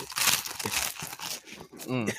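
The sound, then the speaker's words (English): Steady crinkling and crunching of someone snacking on popcorn, loud irregular rustles for about two seconds, with a brief voiced sound near the end. “Come on, munch, eat some more fucking popcorn.”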